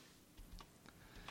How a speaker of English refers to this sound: Oh, he's typing on Snapchat.